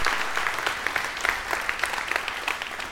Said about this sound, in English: And I just want, if you put down your coffee and notes just for a second, let's just give God a thanksgiving of praise and clap our hands, all you people. Yes, thank you, Lord.